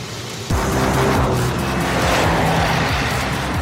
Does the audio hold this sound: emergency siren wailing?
no